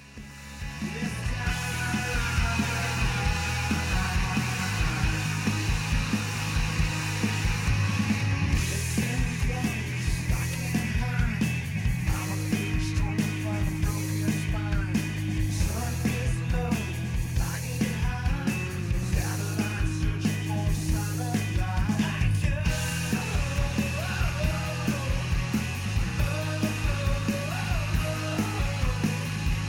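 A loud, full-band rock song plays steadily throughout, with driving drums, dense distorted guitars and sung lead vocals supported by backing vocals.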